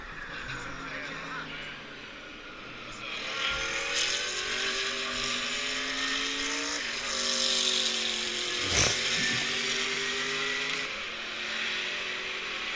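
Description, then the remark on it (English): A Sauber C11 race car engine screams as it accelerates, its pitch climbing in repeated sweeps through several gear changes, loud, with a brief sharp burst near the end. “Sauber C11?”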